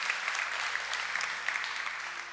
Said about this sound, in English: Can we give them one more clap, church? You can be seated.